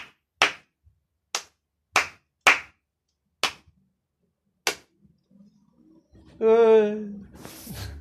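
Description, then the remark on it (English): Six sparse, unenthusiastic hand claps from an audience as the performer comes off stage at the end of a show, spaced irregularly over a few seconds, each a sharp isolated smack, followed by a short tonal coo-like sound near the end. “I kind of came off stage and the claps were like, these were the claps. These are the claps.”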